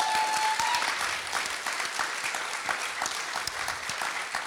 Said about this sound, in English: Come on, let's clap for that. That is amazing.